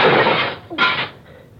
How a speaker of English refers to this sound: Very well. Wait here. I'll break through the window and come around on the inside.